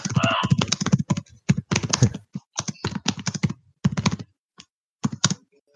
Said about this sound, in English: You might as well just say it out loud because we can hear you typing.